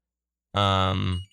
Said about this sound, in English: That sounds like a phone call.